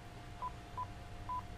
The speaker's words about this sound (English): You can actually dial the number and then press send, and it'll go. It's not that kind of a phone. This is old school phone.